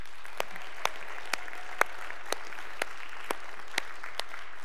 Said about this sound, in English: And also before I get underway, I wanna give a big shout out, have you all give a big round of applause for all of our worship teams the last few months.